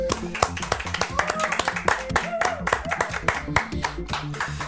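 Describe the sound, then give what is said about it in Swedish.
An audience applauds steadily for about five seconds to welcome guest Gunnar Wall, a dense, even patter of many hands clapping, with a few voices and whoops rising above it and a low steady hum underneath. “Så vi ger en stor applåd och välkomnar Gunnar Wall.”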